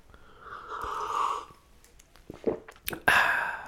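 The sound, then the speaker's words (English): A drawn-out slurp as someone sips hot coffee, followed by a few soft mouth clicks, a swallow and a breathy exhale. No one speaks. “A little coffee.”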